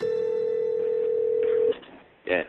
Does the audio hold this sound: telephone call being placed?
yes